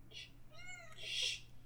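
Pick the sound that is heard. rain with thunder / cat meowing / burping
cat meowing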